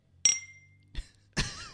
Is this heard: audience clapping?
no